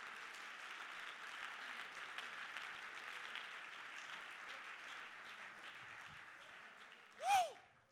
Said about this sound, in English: Come on, somebody clap your hands and lift up your voice.